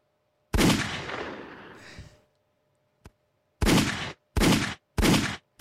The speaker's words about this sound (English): Gunshots at your desk, mad loud.